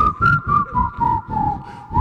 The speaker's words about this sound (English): Who wants to listen to some whistling